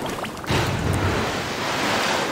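Ocean waves splash and surge as a whale slaps the water with its large flukes and dives, with a brief quieter moment before a loud rush of water swells in and keeps churning steadily. No one speaks.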